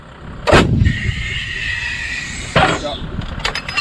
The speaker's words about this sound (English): The army may have just announced a new cyber force and space command, but there's still the need for guns, once pulled by horses, lined up with a grid reference and fired from soggy terrain.